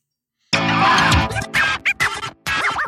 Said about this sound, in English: Well, stop fucking chewing the goddamn pickles and let's go.